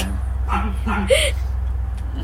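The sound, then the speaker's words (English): A dog barks a few short times at a shed over a steady low rumble while it is raining, the barks faint and spaced out rather than continuous. “She's barking at the shed”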